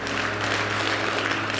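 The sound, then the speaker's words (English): A church audience applauds to praise Jesus for those who connected to him for the first time that day, a steady dense wash of many hands clapping at once, sustained and fairly loud throughout with no voices rising above it. “Can we just clap for those and praise Jesus for those who've been connected to him for the very first time today?”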